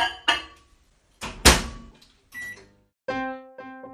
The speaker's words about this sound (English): Well, I'm just going to pop it in the microwave actually to soften.